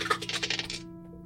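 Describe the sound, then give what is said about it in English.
A die clatters and rolls across a hard tabletop in a quick burst of small rattling clicks, fairly quiet, settling to stillness after under a second, landing showing a 1. “That's a 1, it looks like, on my dice.”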